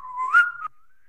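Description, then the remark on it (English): A person whistles a single short note, imitating someone whistling during his own golf backswing; it starts steady, swells and bends slightly upward, then cuts off and trails away faintly. Clear, with no talking. “I think it's whistling during a golf swing.”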